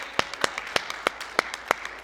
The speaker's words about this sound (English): Come on and give Him a hand clap if you would, please.